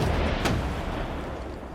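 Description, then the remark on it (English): Cannon lining the walls boom out over London on a constable's signal, with a sharp crack early on that rolls into a deep, sustained rumble. The heavy low thunder fills the whole moment, and no voices are heard. “The constable gives a signal, and the cannon that line the walls boom out over London.”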